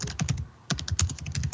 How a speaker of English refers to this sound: Video game. Somebody's pounding the way on that keyboard.